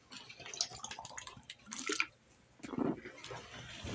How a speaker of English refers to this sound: So I'm going to take a little pause for a minute. I'm going to have a little drink, if you don't mind. I'm going to drink some water.